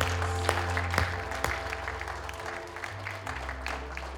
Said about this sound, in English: Let's give him a hand clap.